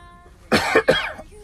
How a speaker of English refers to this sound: Pardon me while I cough.